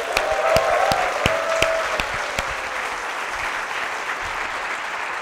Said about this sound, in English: Hey, can we clap it up for them on the live webinar right now?